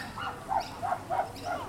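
Chimpanzees at a zoo call out in a rhythmic series of four or five loud, hooting bursts around a mid-high pitch, each rising and falling, with no talking over them.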